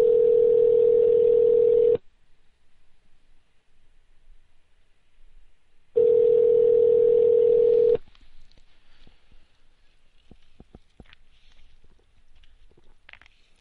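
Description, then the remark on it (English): A telephone ringback tone purrs twice, each steady, loud two-second tone followed by a long silent gap, and the call goes unanswered as only faint line noise remains. “Yeah, they're not going to answer. We're running bad with phone calls tonight, no question.”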